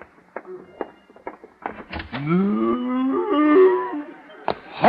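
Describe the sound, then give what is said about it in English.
A few sharp scattered clicks and taps, then a single long, low cow moo that swells and rises slightly in pitch, loud and drawn out for over two seconds. “And you do mean cow.”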